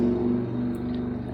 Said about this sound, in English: And are we just going to ignore the motorcycle? Yeah. Sorry. I was just going to let it go. All right. Well, That happened.